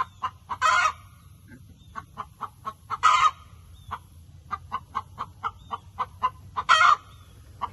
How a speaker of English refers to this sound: You may have lost that eye entirely. One-eyed chicken.